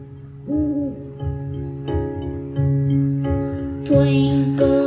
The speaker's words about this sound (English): For example, if the baby woke up and was crying. And in this routine, it triggers lullaby music. Or I guess it's crickets and lullaby music.